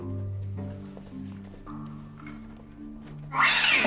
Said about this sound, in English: What is up with that cat? Is someone throwing it? Let's not keep moving, because there is an insane cat down here.